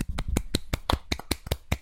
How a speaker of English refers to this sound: Anyway, that's not a slow clap. That's a golf clap. Yeah, that was a golf clap because I don't know.